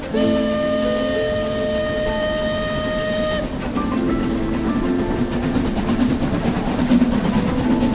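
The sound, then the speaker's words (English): A passenger night train's horn blares a long, steady chord for about three seconds, then gives way to the continuous rumble and rhythmic clatter of the train rolling along the tracks, fairly loud. “All aboard! On the Night Train.”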